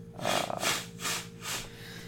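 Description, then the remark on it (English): Someone blows their nose in a series of four breathy, hissing bursts, each rising and fading in a steady rhythm, fairly soft overall with no talking. “He's going to blow his nose.”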